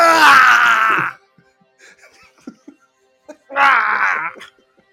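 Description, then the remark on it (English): A man bellows a harsh, strained roar of pain lasting about a second after a rope is swung onto the underside of his chair, striking his testicles, followed by quiet shuffling and a few soft thuds, then a second loud anguished cry of similar length. “… lets out a gruesome roar of pain.”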